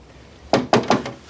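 Three quick, evenly spaced, sharp knocks on a door, with no talking.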